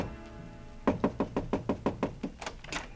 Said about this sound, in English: On my way to the elevator, I got a sudden impulse. I stopped in front of room 300 and knocked.